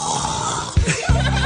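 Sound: person imitating snoring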